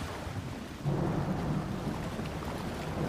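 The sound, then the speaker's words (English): A stormy sea roars with whipping wind and waves splashing and crashing down on themselves, a dense, steady rush of noise with deep rumbling underneath, loud throughout with no voices. “As the storm above grew and grew, they could see the wind was whipping and the waves splashing and crashing down on themselves, and out of the dark they saw a small boat being pushed back and forth, up and down.”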